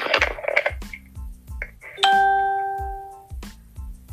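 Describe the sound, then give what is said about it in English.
Electronic phone tones from someone playing with their unmuted phone: short bursts of beeping and tapping, then one bright, bell-like ding that rings out and slowly fades, over a steady low rhythmic thumping in the background. No one speaks. “Whoever got their phone and playing with their phone, please mute your phone, please.”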